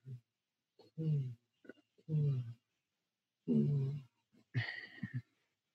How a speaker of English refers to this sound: Yeah, hold on. I don't know if you guys heard that. My dog was making some weird sounds as he's sleeping. That was just a bad dream or something.